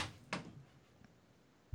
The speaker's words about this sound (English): That was loud. In case you're wondering what that was, that's Elvis trying to break down the door to get back in the studio. The raging beast outside the door.